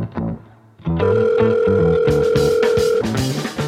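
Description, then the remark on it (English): A telephone ringing sound effect: a loud, steady electronic tone holds for about two seconds over busy, bouncy background sound, then cuts off abruptly. “And maybe she'll make an appearance because she'll hear the alarm bells going off for theological emergencies.”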